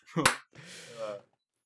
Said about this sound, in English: Why isn't my mic picking up my clap? Mid podcast clap. Ready? 3, 2, 1. Why doesn't my Discord pick up my clap? Someone's like a second behind.